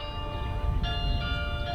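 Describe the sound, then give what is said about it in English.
Tuned bronze carillon bells, played from a console in a church tower, ring together, their long overlapping tones hanging in the air as a fresh chime strikes midway, over a low rumbling background. “A carillon is a set of tuned bronze bells that are played from a console in a church tower.”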